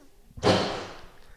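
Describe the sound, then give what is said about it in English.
A trash bag full of beer bottles, being taken out with the trash, bangs down once with a loud, sharp crash, followed by a brief clattering rattle that fades within about half a second. “Banging away. Yeah, he's actually a lot of beer bottles in there.”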